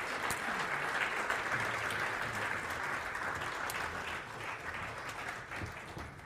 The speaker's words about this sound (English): And he's coming with him the 5 Smooth Stone Award recipients. Yeah, let's keep clapping for these guys as they make their way up.